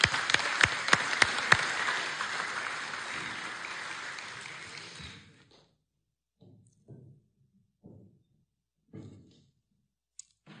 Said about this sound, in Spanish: Daros un fuerte aplauso, muchas gracias.